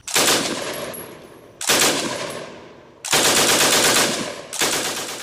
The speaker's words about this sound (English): The soldiers will now have machine guns such as the Maxim, the Vickers, the Lewis, and the Browning that can cut through multiple people with one squeeze of the trigger.